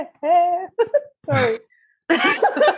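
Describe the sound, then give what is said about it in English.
A fairly loud cough tangled up with voiced sounds, someone trying to talk while coughing; short harsh bursts alternate with strained vocal noises over a few seconds. “I wanted to cough and talk at the same time.”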